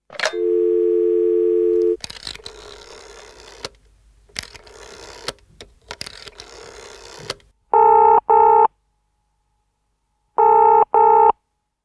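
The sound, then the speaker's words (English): A steady dial tone hums, followed by several seconds of clattery dialing noise, then two rounds of the double-pulse ringing tone heard on the line, clear with pauses between rings, as someone phones a cryptozoologist. “You just phone someone.”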